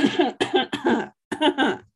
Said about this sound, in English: Sorry, I'm coughing to buy time while I make something up.